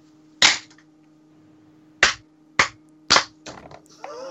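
Four sharp hand claps, made by several people so audio recordings can be lined up, ring out at uneven intervals over a low, steady hum, with a softer smack and some brief rustling trailing after them. No one speaks.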